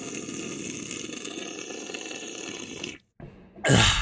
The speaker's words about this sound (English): Yeah, no, it didn't sound good on your end either. That was a big gulp.